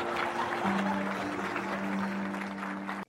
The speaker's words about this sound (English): It also, I don't know why, but that like laughter with applause just, it reminded me of like a King Kong sort of situation. Like, wow, haha. Like, right, guys in tuxedos with big mustaches.